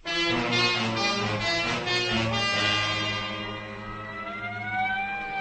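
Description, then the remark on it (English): An ambulance siren wails loudly and steadily, its rich, droning tone holding for several seconds before the pitch begins to climb near the end. No one speaks. “The ambulance is waiting.”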